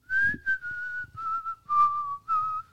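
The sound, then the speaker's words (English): Someone whistles a short tune, clear, with a handful of sustained notes stepping gently down in pitch and brief pauses between phrases. No one speaks. “And as the car falls down, he hears someone whistling.”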